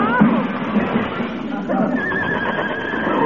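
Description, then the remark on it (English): A runaway horse whinnies loudly and shrilly, its high cry rising and wavering for several seconds over a busy, clattering commotion, with indistinct voices underneath. “Heavenly days, a runaway horse in this day and age.”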